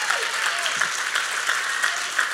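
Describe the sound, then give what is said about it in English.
A standing church audience applauds its pastors steadily, many hands clapping together in a dense, sustained wash of sound that stays at an even, moderately loud level throughout. “Can we just clap for them this morning?”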